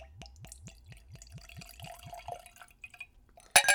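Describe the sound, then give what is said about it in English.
Rum glugs out of a newly opened bottle with a metal screw cap into a glass in a quick, steady series of about ten gurgles, tapers to a thin trickle, then ends with a sharp clink. “So I'm going to pour myself some.”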